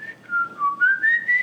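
A person whistles a short, wavering tune, the clear pure tone dipping in pitch and then climbing again across several connected notes, with no talking around it.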